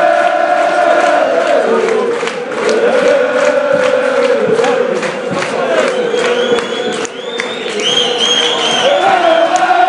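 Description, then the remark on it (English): Celtic fans at a football match roar and cheer without letup at the full-time whistle after Celtic beat Thistle 2-0, a dense wall of voices with whoops, shouts and scattered clapping, plus high whistles piercing through near the end. “It's a full time whistle now. Celtic win 2-0. Celtic fans are a party.”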